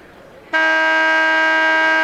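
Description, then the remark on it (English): A loud, sustained electronic basketball arena buzzer blares suddenly after a brief stretch of low background murmur, before the starting lineups of the Bozeman Bucks and the Big Sky Eagles, holding one steady, harsh, harmonically rich tone to the end. “There is the buzzer, and we will have our starting lineups.”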